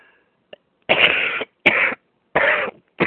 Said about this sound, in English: Sorry, I haven't coughed all day.